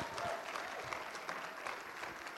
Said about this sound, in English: Now, to warm up for that, because God has been so good to us in 2017, can we thank God and cheer for God? Can we say, thank you, God? Let's cheer, all right?